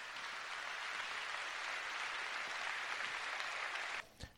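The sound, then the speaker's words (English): Loud, dense applause from a large crowd for George W. Bush, a steady roar of clapping that holds for about four seconds before cutting off abruptly, followed by a brief thump. “Massive applause, George W.”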